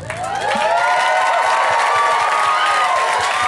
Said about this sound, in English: All right, everybody. If no doubt you had a good time tonight, just clap and shout.